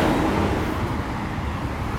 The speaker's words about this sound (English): Big truck.